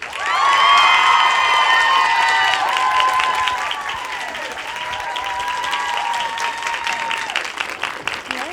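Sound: audience applause and cheering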